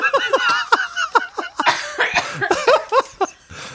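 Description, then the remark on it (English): A loud fit of rapid, sputtering coughs from someone who choked on an M&M candy, with strained voiced gasps between the bursts, continuing in an uneven rhythm for several seconds. “Anyway, I choked on my M&M.”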